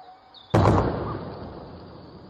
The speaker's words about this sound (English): It was in fact a sonic boom. It happened about lunchtime and was caused by a jet flying incredibly quickly. This is what it sounded like.